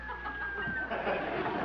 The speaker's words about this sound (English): Guess I'll have to go in there. Phew. Stuffy in here. Hello, little hens.